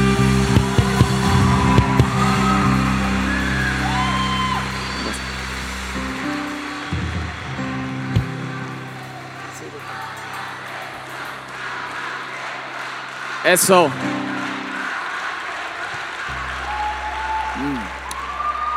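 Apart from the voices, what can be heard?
audience cheering and applauding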